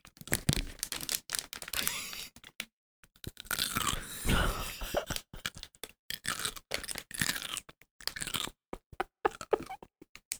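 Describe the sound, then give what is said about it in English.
Wet, crunchy bites into pickles, cucumbers fermented in vinegar, with irregular bursts of chewing and crunching, separated by brief pauses and no talking. “that have been sitting, fermenting. In vinegar. Are you going to crunch one?”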